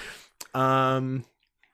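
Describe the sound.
A short slurping sip of Pepsi and a small click, then a sustained voiced throaty sound like a strained gasp from choking slightly on the drink, fairly loud, with quiet after.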